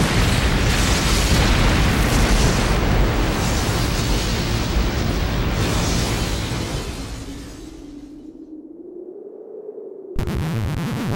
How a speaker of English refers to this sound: The whole thing ends with a huge explosion. You never find out what happens.